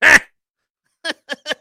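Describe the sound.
A person imitating comedian Gilbert Gottfried's duck-like voice gives a loud, raspy quack, then after a pause three shorter, quicker nasal quacks in a row, with no other sounds.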